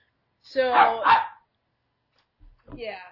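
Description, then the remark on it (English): An excited dog jumping up and down lets out a drawn-out, whiny yelp, then after a short pause gives a second, shorter high-pitched yip. “Your dog's, like, eating something. My dog is, like, jumping up and down.”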